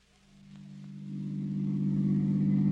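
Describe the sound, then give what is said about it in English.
The engine of a new car with a rumble seat hums low and steady, growing gradually louder and fuller as the vehicle drives, with no voices over it. “Well, how do you like the new car, Mary?”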